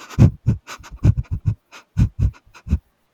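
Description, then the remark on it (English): Quick, irregular sniffs and huffs, about a dozen short breathy bursts in a few seconds, fairly loud with no talking, of a dog sniffing the ground as if following a trail down a path by a river. “And you see a dog sniffing the ground as if he's following a trail come down the path by the river.”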